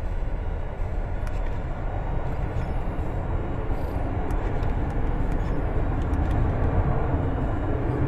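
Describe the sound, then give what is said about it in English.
A loud airplane roars overhead, a dense, steady rumble heavy in the low end that fills the whole stretch without fading. No one speaks. “Those planes are so loud.”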